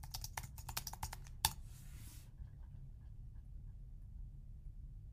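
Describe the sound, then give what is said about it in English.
Quick bursts of computer keyboard typing for about a second and a half, ending in a sharper key strike, then a low steady hum with no talking. “Are you typing it correctly?”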